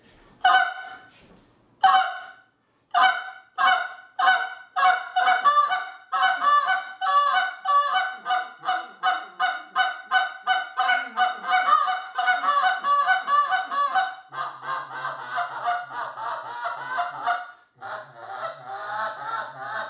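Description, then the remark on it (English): A flock of geese honks in a loud, dense chorus, the calls overlapping rapidly and continuously, with no voices, then thinning slightly toward the end. “There, should put them geese into your bootstraps and then in your bag, and at least offer some shooting and try.”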